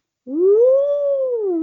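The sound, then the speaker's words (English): A person imitates an elephant trumpet with one loud, sustained, wailing vocal note that rises, holds, then dips slightly, carrying on without any talking. “No, that's what that's what children acting like elephants make.”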